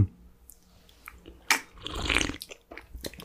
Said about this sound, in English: put it over here so they can hear it pouring. They can hear it and see it, you know?